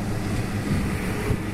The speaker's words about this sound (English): It is a Sony lapel mic, and this truck's going to pass me here. And another truck.